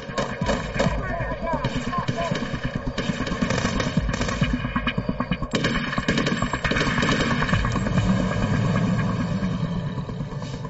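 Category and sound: sound effect, gunfire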